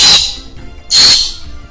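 A bird screams loudly twice, each harsh, piercing screech lasting a fraction of a second with a short pause between them, alone with no talking.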